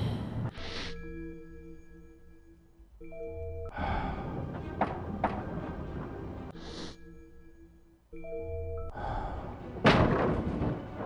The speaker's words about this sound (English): That's such a painful wall sound, but it works so well.